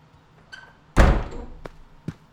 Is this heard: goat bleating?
no